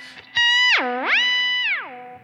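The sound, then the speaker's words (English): A heavily effected electric guitar note through fuzz, boost, big delay and big reverb on a Helix in Stompbox mode, fuzzy and sustained, dives sharply down in pitch with a whammy on the expression pedal, rises back, holds, then swoops down again, with delay and reverb trailing it. No one talks. “So this is the fuzz, the boost, the big delay, the big reverb, and of course the whammy on the expression it. Pedal.”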